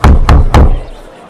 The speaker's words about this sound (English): I will stop her in the cart here, and I will knock on the door.